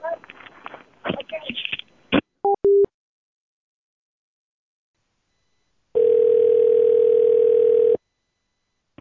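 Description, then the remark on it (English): Brief talk and a couple of short beeps give way, after a pause, to a single loud, steady two-second ringback tone of a phone call to King Supers ringing out, followed by silence. “Thanks for calling King Supers.”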